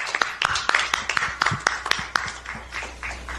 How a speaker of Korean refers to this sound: 자, 이제 기다리시던 우리 공영훈 전 사장님의 이야기를 들어볼 시간입니다. 여러분 힘찬 박수 부탁드립니다.